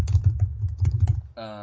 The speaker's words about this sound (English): It's a nice typewriter you have. I know. That's me typing. I type like a psychopath.